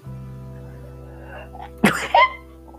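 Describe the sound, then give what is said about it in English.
A single sharp sneeze, with the mouth covered, bursts out after a quiet stretch with a low steady hum, followed by a brief voiced exhale or wince. “I covered my mouth, don't worry. This is quarantine day, probably 53. Sneezing, probably.”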